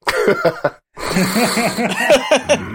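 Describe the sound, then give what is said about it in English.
A person acting out the dwarf character Calbo sniffing the air in a dark cellar makes a run of quick, loud nasal sniffs in short bursts, pauses briefly, then carries on sniffing mixed with snickering, chuckle-like vocal sounds. “But Calbo sniffs, and the scent isn't right. Sniff, Calbo.”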